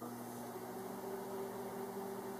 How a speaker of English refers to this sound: One way to clean your sponge is by putting it in the microwave. You'll want to make sure that your sponge doesn't contain any steel or other metals. Then you want to wet your sponge and put it in your microwave on high for 1 minute.